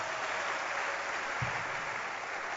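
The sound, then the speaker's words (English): A church audience claps for their pastor, a dense wash of many hands with no distinct individual claps, holding an even loudness throughout with one brief low thump partway through. “Clap your hands for him.”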